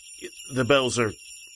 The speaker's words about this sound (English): The bells are just kind of... Can we cut the bells, maybe? Just... No? No chance?